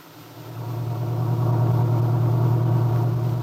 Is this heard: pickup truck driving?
yes